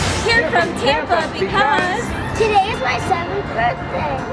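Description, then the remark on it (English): A dense outdoor crowd murmurs and chatters steadily in the rain, many overlapping voices blending into a continuous babble with occasional louder calls rising above it. “Oh, what a great crowd. Rainy and still they come.”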